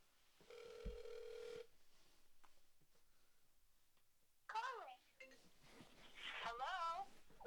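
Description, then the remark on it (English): A single steady ringback tone buzzes for about a second, as heard through a phone line while a call is placed to a mother, then a pause before a voice comes on the line. “We're going to go to the tiebreaker and see if moms picks up her phone.”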